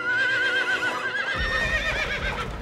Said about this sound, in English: Quick! Their horses!